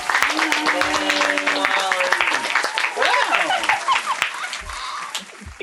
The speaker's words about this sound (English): Everybody, give a round of applause